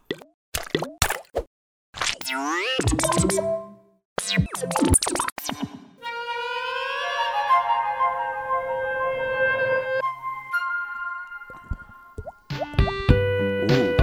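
Fairly loud water drips and resonant plops fall in an irregular run, with a stretch of sustained gurgling, pouring-like tone in the middle before the droplets return near the end.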